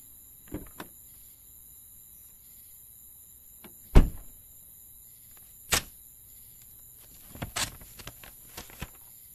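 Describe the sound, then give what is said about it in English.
A car is put into park and a door shuts: a handful of separate clunks and thumps over a quiet, humming background, the loudest a solid slam partway through, with no one talking. “As he puts the car in park.”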